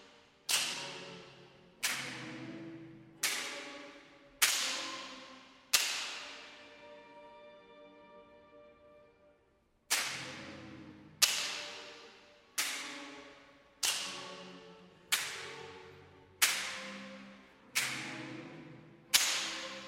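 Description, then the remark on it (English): Loud, sharp slaps strike again and again at a steady pace in the opening of a musical composition, each slap paired with an orchestrated choir sample and leaving a brief ringing tail; midway the slapping pauses while a long resonant tone slowly fades before the slaps resume. “So with each slap, there comes a different analysis of a choir sample that is orchestrated and interpreted.”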